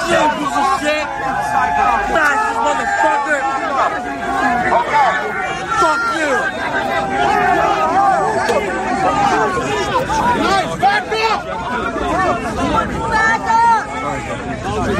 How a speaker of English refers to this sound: My other question is, how many of these people yelling, trying to drown out Marjorie Taylor Greene, are official members of the press?